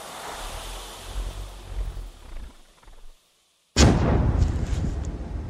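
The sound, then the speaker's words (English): A low, dull rumble fades into a moment of silence, then a hand grenade, thrown over a mud wall toward a Russian soldier about 20 meters away and landing about 5 meters too far, bursts suddenly and loudly, followed by a sustained roaring, crackling aftermath. “So these hands pull out a grenade, pull the pin, and huck it over the mud wall.”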